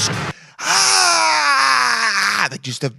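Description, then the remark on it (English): A man lets out a long, loud, guttural scream that slides steadily downward in pitch for about two seconds, demonstrating the sound, with brief bits of talk before and after. “Just guttural. And it has to go down because you can't just be like, ah.”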